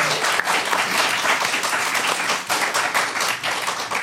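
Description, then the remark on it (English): Loud, sustained audience applause for both teams in a quiz: dense, crackling clapping from many hands that stays steady and full for about four seconds, with no voices standing out. “A round of applause for both our teams.”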